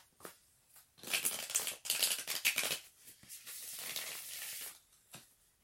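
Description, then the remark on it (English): Crisp papery riffling of a deck of cards being shuffled, a burst of rapid flicks followed by a softer, steady stretch of sliding cards and a final tap, with no talking. “heart rate went up from this shuffle.”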